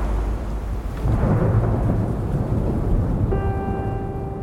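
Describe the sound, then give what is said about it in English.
Heavy rain hisses steadily while deep, rolling thunder rumbles low underneath during a storm on a mountain; near the end a sustained tonal hum rises over the storm. No one speaks. “He thinks about the rest of the climbers up there, fighting through this storm, and feels very, very worried.”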